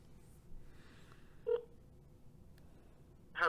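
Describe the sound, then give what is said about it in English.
Short electronic phone tones sound over a low background hum, one clear beep midway and another at the end, as a call to a friend is dialed. No one speaks. “Hopefully she answers the phone.”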